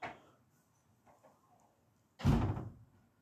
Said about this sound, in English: Someone just left my house, apparently, because the front door just slammed closed.